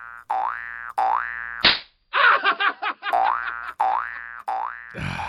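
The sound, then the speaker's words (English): A cartoon sound effect sequence: springy, wobbling boings repeat, broken by a sharp smack and a brief rattling clatter, then the boings return. Loud, with no talking. “Spring Hill Jack slap.”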